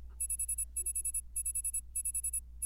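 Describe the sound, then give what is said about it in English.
A high-pitched electronic 2 o'clock reminder alarm beeps in quick bursts of about five or six tones, repeating four times in a steady pattern over a low background hum, with no voices. “Oh, there's my 2 o'clock reminder.”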